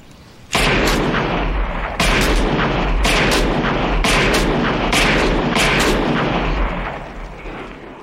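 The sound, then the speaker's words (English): A rapid volley of loud pistol gunshots from a .44 Magnum Automag, which holds a 300-grain cartridge, about a dozen sharp cracks in uneven pairs and clusters over a continuous roar, with no talking. “Well, this is the 44 Magnum Automag.”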